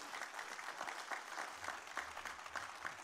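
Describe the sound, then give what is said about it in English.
An audience applauds the Lord in a steady, dense wash of applause, many hands pattering together at an even loudness for a few seconds, with no voices rising above it. “Applaud the Lord, and we'll get into Matthew 18.”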